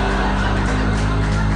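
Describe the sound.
A voice mimics a congressman's office phone ringing with a steady, buzzing trill, loud and continuous for about a second and a half, with a few brighter pulses riding on top.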